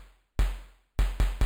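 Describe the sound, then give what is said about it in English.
Four synthesized drum hits from a drum synth triggered by a Pamela's New Workout module, with pitch and decay turned up, a deep, booming low end and a noisy crunch on top, each ringing out with a long decay; the first stands alone, then three follow in quick succession. “Let's turn up the decay a little bit.”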